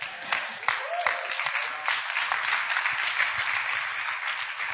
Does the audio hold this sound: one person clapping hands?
yes